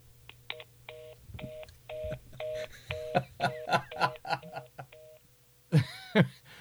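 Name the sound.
phone line tones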